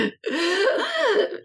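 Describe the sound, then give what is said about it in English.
A voice imitates a giant gasp for air, as if coming back and almost unable to breathe: a quick breathy catch, a brief pause, then a long, strained, voiced inhale that wavers in pitch before trailing off. “As I come back, I almost sound like I couldn't breathe, so like this giant gasp of air.”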